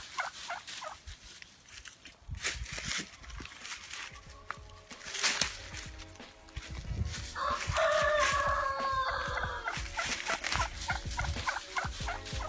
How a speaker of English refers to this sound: All of the turkeys are there. They're strutting around. It's a beautiful thing.